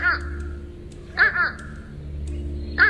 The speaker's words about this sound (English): Today's Talking Birds featured feathered friend. Beautiful fish crows. Gorgeous, but I guess not that smart for a crow.